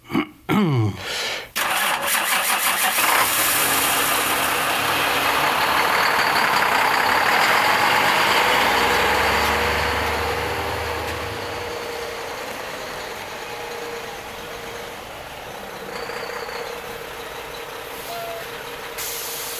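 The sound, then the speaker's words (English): A voice imitates a heavy twin-axle lorry: sputtering start-up, then a long loud rumbling, hissing engine drone that revs and gradually settles, with a brief air-brake-like hiss near the end. “Now, my next impression is a bit more difficult. It's a twin axle lorry.”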